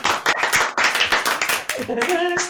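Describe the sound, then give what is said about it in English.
A short burst of applause from a small group for the performer playing Lumiere, dense overlapping claps, with a voice rising over the clapping near the end. “In fact, quick round of applause for Lumiere there, I think, for doing that.”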